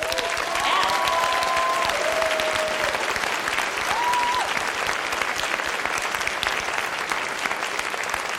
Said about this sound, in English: And I think the best thing that we could do is just give her a massive round of applause.